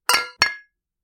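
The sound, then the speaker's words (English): Two quick, bright clinks of wine glasses touched together in a toast, each ringing out with a shimmering high tone that fades within a fraction of a second. “So I think we should cheers. All right. Cheers. Cheers.”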